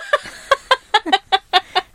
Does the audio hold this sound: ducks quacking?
yes